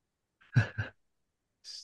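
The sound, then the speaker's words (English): A stifled, held-back sneeze: two quick muffled bursts in a row, then a soft breathy exhale after a short pause. Fairly quiet, with no talking. “sorry, I was just holding back a sneeze.”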